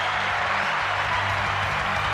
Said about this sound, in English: That is awesome stuff. That's worth a round of applause.